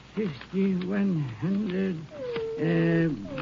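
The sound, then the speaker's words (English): A dog growls nervously in several drawn-out bursts, its tone rising and falling into whiny groans with short breaks between them, and no one else is talking, while its owner counts a large sum of money in Irwin County, Texas. “As he was counting, his dog Rags appeared to be nervous.”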